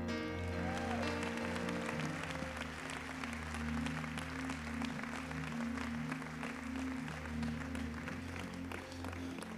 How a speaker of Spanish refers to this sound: Sigue golpeando las palmas fuerte. Sigue golpeando las palmas fuerte. Sigue golpeando las palmas fuerte.